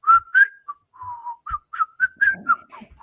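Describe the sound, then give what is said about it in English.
Someone tries to whistle, producing a string of short, breathy, uneven notes that waver in pitch and keep breaking off, with no talking. “Can't whistle.”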